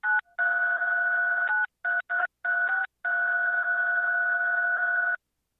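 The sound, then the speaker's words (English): A series of steady electronic tones, like telephone keypad beeps, sounding in short bursts and then one long sustained tone, fairly loud with no talking. “And I was hearing a lot of beeping over there.”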